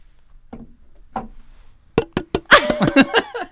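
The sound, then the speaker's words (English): A glass tapped and clinked against a microphone to make ASMR: two soft taps, a pause, then a rapid flurry of sharp, ringing clinks. No one speaks. “I'm back, glass to the mic. I do want to make some ASMR.”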